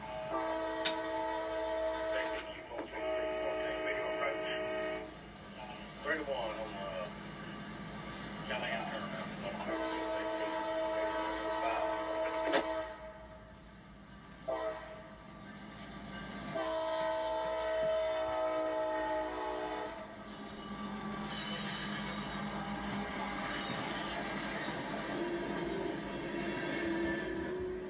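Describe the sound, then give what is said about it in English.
A CSX freight train, Q456, led by an EMD ST70AH diesel locomotive, rumbles past while its horn blows in several long, loud blasts, the harmonic chords rising over a steady low engine drone and rolling rail noise. “Next up is Q456, an EMD ST70AH in the lead.”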